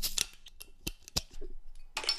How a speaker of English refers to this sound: You know, the pop bottles just never sound as good as the opening can, do they? But it is the Stella, so it tastes good.